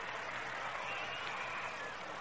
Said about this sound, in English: And the crowd is a bit noisy right now.